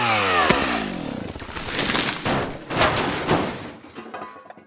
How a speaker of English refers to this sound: There was a tree kind of in the way of the line of sight for this internet dish. So in another bit of a panic, I got out my chainsaw and I felled this tree, which was near the house.